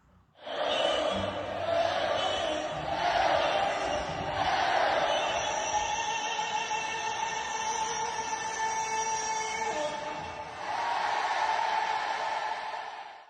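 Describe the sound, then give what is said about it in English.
A record crowd of more than 92,000 fans at the outdoor Memorial Stadium in Lincoln, University of Nebraska, roars and cheers at a women's volleyball match in a continuous, dense wall of sound, swelling in waves, easing briefly, then surging loudly again before cutting off. “More than 92,000 fans flocked to Memorial Stadium in Lincoln to watch a volleyball match on Wednesday.”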